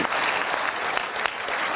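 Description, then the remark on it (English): An audience applauds steadily, many hands clapping in a dense, continuous patter at moderate volume, with no voices over it. “So I applaud you.”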